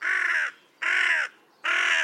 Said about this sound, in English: First, the jackdaw. The jackdaw is a vocal bird, rarely keeping quiet for long. The calls are short and high-pitched compared to those of the crows.